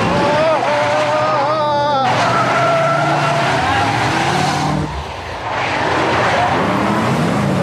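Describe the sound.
A car races loudly with its engine roaring while tires squeal and skid in long, wavering screeches, continuous, with a brief dip before the skidding resumes; voices can be heard under the noise.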